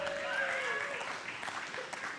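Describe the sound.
An audience applauds steadily for about two seconds, a dense, even patter of many hands clapping at once, with a faint voice or whistle rising briefly through the noise early on.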